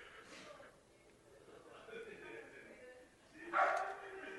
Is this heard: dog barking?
yes